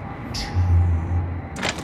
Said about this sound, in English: Fault detected. Back door. Tonya opened the back door as if she had run out, and then tiptoed as fast as she could to the back stairs.